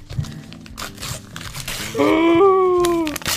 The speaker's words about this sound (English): The envelope, please. We don't have an envelope. Here, just rip a paper.